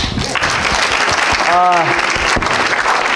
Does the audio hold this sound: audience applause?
yes